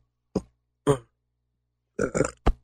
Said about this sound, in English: Got a burp stuck. Oh, got it. I'm back.